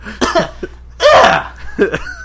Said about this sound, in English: What the fuck was that? Just cough clear.